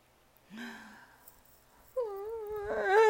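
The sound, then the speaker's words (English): A voice imitates the angry and sad noises of Smilo, a tiger-striped kitten: a short low whine, a pause, then a longer wavering, rising mewling wail that grows louder toward the end. “And Smilo the tiger striped kitten started to make noises that were angry sounds and sad sounds.”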